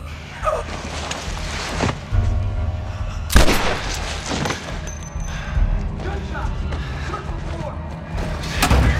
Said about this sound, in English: Gunshots!